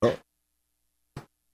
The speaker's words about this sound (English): Because I got headphones, I'm not going to hear you blowing wind out your butt. It's all burp, burp.